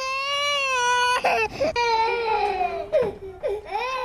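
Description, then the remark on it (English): A baby cries loudly and continuously, a high wailing tone with rich harmonics, broken by short gasping breaths and sharp catches before each new sustained wail, at a military base. “Speaking of babies, if this is what you think the military sounds like...”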